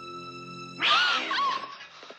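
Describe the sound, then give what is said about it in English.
A movie cat jump scare: a low, steady droning tone gives way to a sudden loud cat screech with a harsh crash, a startling jolt that then trails off over the next second. “And the famous cat. Goddamn cat jump scare.”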